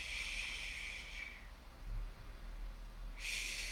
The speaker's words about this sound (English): Breathe, slow down your breathing. And sometimes when you exhale, it helps me to go shh.